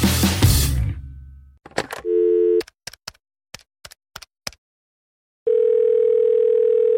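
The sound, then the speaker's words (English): A steady electronic telephone tone sounds after a burst of noise, a short tone and a quick series of clicks, as if a call is being placed and is ringing on the line. No one speaks. “Finally answering your phone.”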